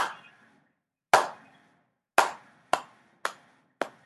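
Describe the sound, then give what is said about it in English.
A slow clap after a monologue: six sharp, ringing hand claps with no voices, widely spaced at first and then coming a little quicker toward the end. “Slow clap.”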